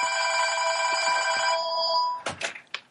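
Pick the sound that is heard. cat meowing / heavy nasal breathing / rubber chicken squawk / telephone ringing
telephone ringing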